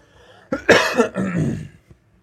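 A loud cough: one harsh, raspy burst followed right away by a second, rougher hack, with no talking around it.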